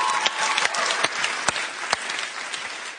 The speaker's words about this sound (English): And can you guys just give these guys a round of applause for hanging out here? Woo!